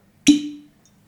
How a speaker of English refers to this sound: Well, can we pour a wee Harris gin first? Oh, I would love one. I think we should. Listen to the best sound in the world.